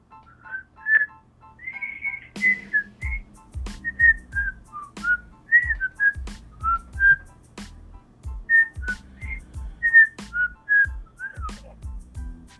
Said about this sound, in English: You said something about whistling a song. I want to whistle a song before I get started.